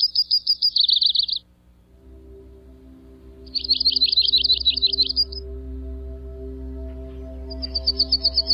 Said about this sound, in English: Here's a typical song of the yellow-rumped warbler.